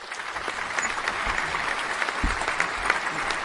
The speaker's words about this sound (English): Did you hear that? Everybody's out there. They're cheering.